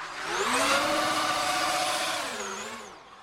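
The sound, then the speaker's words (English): An electric Formula E race car whooshes past, its high whining motor tone and airy rush swelling over a few seconds, then the pitch bends downward as it recedes. No one speaks. “Formula E is far quieter than Formula One because you don't have the noise of the petrol engine.”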